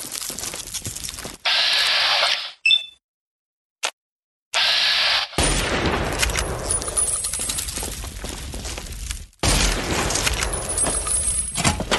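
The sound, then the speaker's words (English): A video game radroach creature attacks with harsh hissing screeches and rattling, skittering bursts, loud, broken by a brief silent pause; no one speaks. “Coffee pot, the red roach, as you can hear.”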